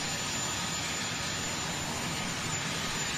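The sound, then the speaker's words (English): A helicopter engine runs, a loud, steady turbine roar with a broad rushing hiss that stays constant throughout, with no voices, as a man has just gotten off the helicopter. “He's on he's just gotten off of his helicopter.”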